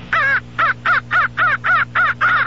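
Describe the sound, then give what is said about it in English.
Eight harsh crow caws in a steady rapid series, loud, each slightly buzzy, played through a Johnny Stewart transistorized Electrocall crow and varmint caller, with a low steady hum underneath. “Now you can have action the year-round with Johnny Stewart's transistorized Electrocall crow and varmint caller.”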